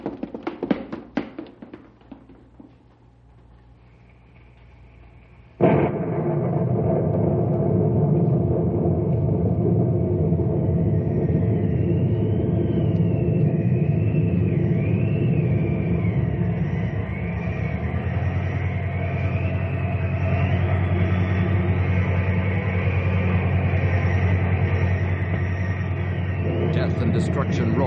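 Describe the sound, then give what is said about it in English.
A tornado funnel's roar bursts in suddenly after a few seconds of low rumbling and tapping, then holds as a loud, dense, steady rush with a thin whistling whine wavering above it, as the tornado sweeps into Knotty Pine and sucks up the lumber yard. “The funnel is lifting. It's drawing back into the cloud.”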